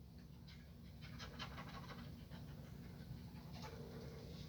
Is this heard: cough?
no